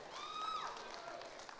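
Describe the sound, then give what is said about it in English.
An audience gives itself a round of applause, with steady, dense clapping throughout, and a shrill whistle rises above the applause, holds briefly, then slides downward in pitch. “All right, y'all give yourself a round of applause because this.”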